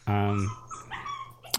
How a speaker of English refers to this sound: You're hearing a dog whine. I wish I knew how to stop that or control that. But I think the easy way is to not have a dog.